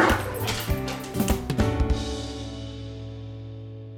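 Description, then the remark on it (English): A dog barks excitedly in a quick series of sharp yips and woofs over about two seconds, followed by a lingering, fading ring with no voices. “Hey, Pepper, want to go for a walk?”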